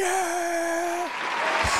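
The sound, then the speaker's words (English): A steady electronic tone holds for about a second and slides downward, then gives way to a short, dense burst of applause-like clapping noise. No one speaks. “Hey, there's the applause.”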